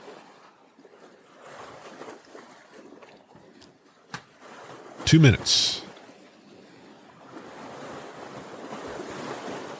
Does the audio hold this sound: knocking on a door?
no